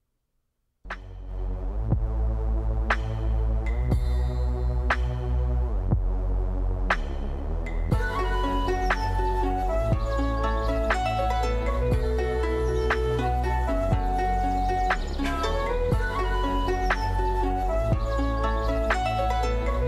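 A song begins after a brief pause, opening with sparse, ringing melodic notes before a fuller band joins in and the music continues steadily and loudly to the end.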